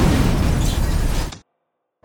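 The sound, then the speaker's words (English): A loud video game explosion of cars parked next to a motorcycle: a roaring, bass-heavy blast with crackling noise that holds for over a second, then cuts off abruptly into silence before a brief return of sound. “Okay, the car parked next to the bike just somehow exploded. All the cars nearby exploded.”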